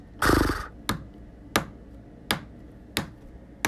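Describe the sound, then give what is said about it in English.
A person's impression of a horse telling how old it is: a short, breathy whinny imitated by a human voice, followed by five sharp, evenly spaced taps like a hoof stomping out a count, fairly loud, with no talking. “One of those happens to be a horse telling how old he is.”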